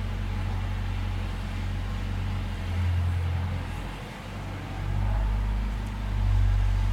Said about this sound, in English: And I'll try and adjust my volume in accordance with the tractors. We'll see.